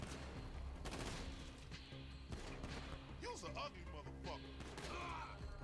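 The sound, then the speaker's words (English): Video game gunfire crackles in repeated loud bursts over a constant low rumble, with heavier booming blasts mixed in and faint voices briefly rising in between, as the player shoots the gas leaking from a car to blow it up. “He said shoot the gas, and I'm trying to, but...”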